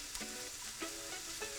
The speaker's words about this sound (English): Start by cooking a half of a small onion diced in a little oil in a pan. After about 5 minutes, when the onions have softened, add a quarter pound of ground beef and just let it cook, breaking it up along the way.